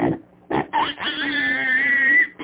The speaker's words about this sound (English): we'd have the original pig squeal from years ago